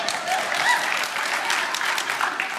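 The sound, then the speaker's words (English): An audience applauds and cheers an announcement about a new church team member who will oversee the worship ministry: a dense, even wash of clapping with a few faint cheers and whoops rising through it, sustained at a constant loudness throughout. “I noted my wife was cheering the loudest on that one.”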